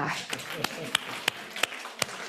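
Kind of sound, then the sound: human body sound, hand clapping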